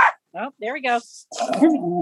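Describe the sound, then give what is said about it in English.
A border terrier named Henry, a ribbon-winning show dog from Bainbridge Island, Washington State, barks in a few quick, yappy bursts, followed by a rougher, noisier stretch of barking and growling that runs to the end. “One of them is a border terrier named Henry, who's won some ribbons this summer.”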